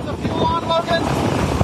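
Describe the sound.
Loud, steady wind roars past a small light J3 Cub airplane in flight as a man hand-props it, a continuous buffeting rush filling the whole moment, with faint muffled voices beneath it.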